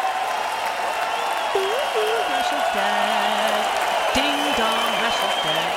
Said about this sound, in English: If you can play cheering crowds about AIDS patients and people dying, then I can play crowds cheering for you dying.